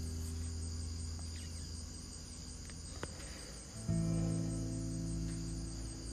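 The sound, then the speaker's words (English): Crickets chirp steadily and continuously through the whole stretch, a thin high trill over a low background rumble that grows slightly louder partway through. No voices. “I'm listening to the crickets. I hope you can hear them.”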